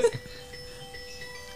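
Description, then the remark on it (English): A short electronic alarm jingle signalling a special segment plays, its bright, steady melodic tones ringing out after a sharp burst at the start and holding at an even, moderate loudness. “Oh, that's our special alarm.”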